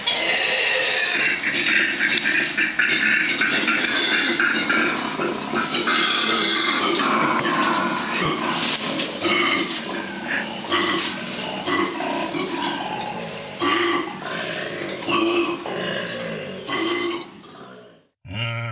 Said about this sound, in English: It gives me great delight to tell you that this is the sound of two arguing koala bears. Oh, say it ain't so. Yes, it is, in fact.